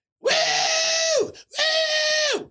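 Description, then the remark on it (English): A voice imitates the shrill screaming of a bachelorette party in a bar: two long, loud, sustained high-pitched shrieks, each about a second long, separated by a brief pause, with pitch dropping off at the end of each. “Fucking yelling obnoxiously.”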